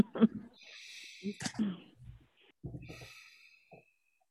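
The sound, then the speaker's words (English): Two long, airy, deep breaths, each lasting over a second, with soft throaty voiced sounds between them and a short pause in the middle, during a guided breathing exercise. “So I invite you to close your eyes and sit up straight as you can and start breathing deeply, longly and deeply.”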